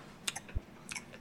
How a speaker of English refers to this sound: You guys might be able to pick up the lip smacking on the mics, actually. yikes. It sounds like some camels over here.